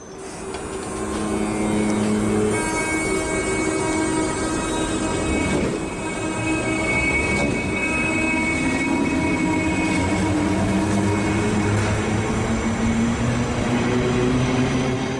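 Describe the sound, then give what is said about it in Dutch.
A train's wheels squeal against the rails in a sustained, piercing metallic whine with layered high tones, loud, running continuously over the rumble of the moving railcars. No one speaks. “Dus ik herken hier de piepende wielen van de trein.”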